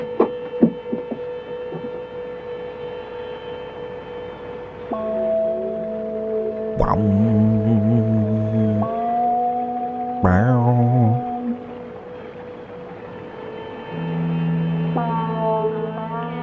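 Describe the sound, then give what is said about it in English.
Suspenseful music of low, sustained droning tones that shift in layers, punctuated by two sharp swelling stings partway through, played steadily with no voices. “Very suspenseful music.”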